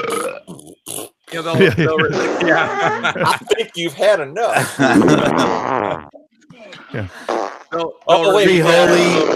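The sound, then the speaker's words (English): Repeated rude fart noises, loud, erupt in bursts around a voice that speaks briefly, with chuckling mixed in. “You need to add farts to the list.”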